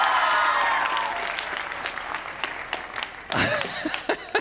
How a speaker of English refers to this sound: Can we give it up for that team and the production they've been putting on for us?